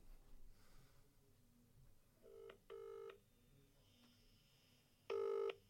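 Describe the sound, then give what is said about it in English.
A few quick phone keypad beeps, then electronic ringback tones pulse on a call line, two spaced rings sounding clear against quiet background hiss. “She won't pick up. Never pick up. She doesn't pick up.”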